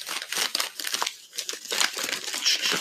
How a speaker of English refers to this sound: Don't mind the crumpling of paper.